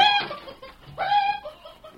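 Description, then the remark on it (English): A hen squawks loudly, then lets out a quick run of short, rhythmic clucks, harmonic cries rising and falling with no talking around it. “Oh, get out of here, you squawking old hen.”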